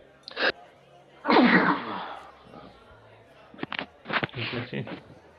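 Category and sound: human body sound, sneeze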